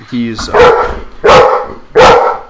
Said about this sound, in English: But my wife is going to walk in the door, and I've got my dog here.